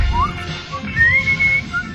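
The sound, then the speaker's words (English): Someone whistles a short melodic tune, the theme of the TV show Dallas, the pure tone gliding between pitches in a rising and sustained line, with a low background rumble underneath. “Yeah, but Dallas, I mean, that theme is just so iconic and so whistleable, like, you know, memorable. Whistle a little bit.”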